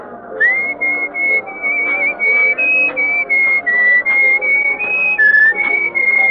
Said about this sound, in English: Well, you were whistling our tune, so I thought you were expecting me.